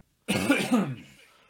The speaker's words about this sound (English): All right, so I guess with that cough, we're finished.